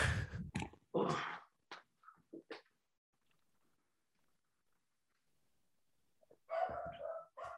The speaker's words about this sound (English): Eli, can everyone hear? Can you hear Eli barking? I do hear Eli barking.